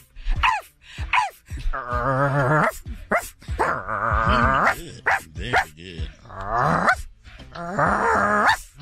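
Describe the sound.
A person mimics a barking dog, letting out a string of loud, drawn-out woofs and whining yowls in uneven bursts, with no ordinary talk in between.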